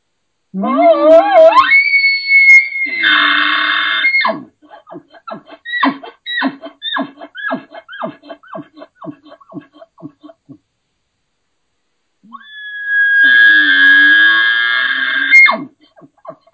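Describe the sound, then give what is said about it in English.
Two elk challenge bugles blown on a call: each starts with a low growl rising into a high, piercing whistle, and the first trails off into a rapid series of grunting chuckles before a pause. “I only use a couple of particular bugles for hunting, but I'll put a few out here. These are mainly challenge bugles.”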